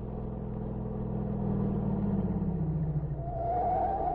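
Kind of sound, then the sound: vehicle, car driving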